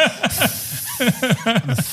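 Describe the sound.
A voice imitates a snake's hiss in a quick run of about seven breathy, rising-and-falling bursts, fairly loud, with a hissing edge over each one.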